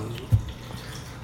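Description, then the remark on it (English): Water splashes briefly, with a short louder gush near the start that settles into a low, steady trickle like pouring into a glass or sink. “Oh, here's some water. Have some water.”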